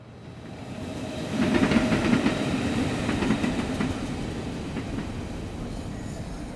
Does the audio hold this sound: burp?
no